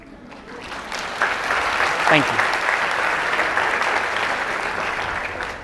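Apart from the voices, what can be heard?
audience applause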